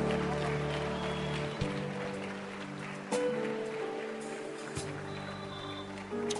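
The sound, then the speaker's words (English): A church audience claps their hands for people walking to the front, in a dense, steady wash of applause that lasts the whole time, with sustained low musical tones humming underneath. “Go ahead and clap for them.”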